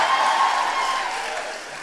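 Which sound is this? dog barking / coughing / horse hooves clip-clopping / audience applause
audience applause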